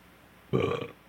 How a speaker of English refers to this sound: Sorry about the belch. I tried to redirect my mouth.